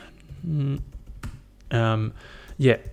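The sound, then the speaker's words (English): Scattered clicks of typing on a computer keyboard, moderately quiet, come in an uneven rhythm between short hummed or murmured vocal sounds. “I'm horrible with the keyboard.”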